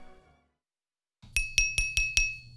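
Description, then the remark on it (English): Five quick, evenly spaced taps knocked on a window pane, each sharp strike leaving a faint bright glassy ring, in a steady rhythm with nothing else around them. “Hire one of our professional window knockers to rap, tap, tap your vic in the morning or whenever.”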